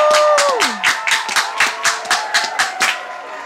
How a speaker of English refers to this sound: Can we get the proper hand claps going on?